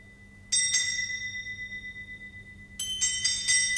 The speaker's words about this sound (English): It swung so softly in the outset that it scarcely made a sound. But soon it rang out loudly, and so did every bell in the house.